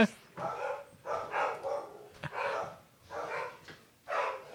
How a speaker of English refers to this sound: He's going to get the dogs. Going to settle down the dogs.